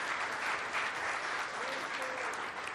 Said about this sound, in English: Would you just take a minute, give yourselves all an incredible round of applause. Thank you.